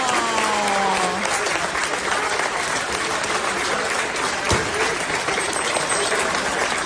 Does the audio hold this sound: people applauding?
yes